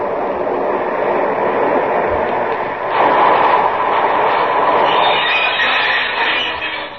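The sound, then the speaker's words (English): A six-car local train pulls into a station with a steady, heavy rumbling roar that swells louder about midway, then holds with a brighter hissing edge before easing off at the end. No one speaks. “Here comes the local.”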